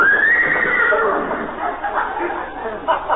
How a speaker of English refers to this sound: Oh, that's that Great Dane that belongs to the people next door. Great Dane? Sounded like a horse to me.